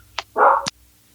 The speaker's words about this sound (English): I got a dog in there because my dog's being an idiot. Isn't listening to me.